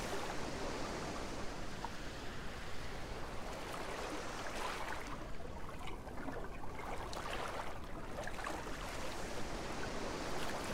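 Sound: ocean waves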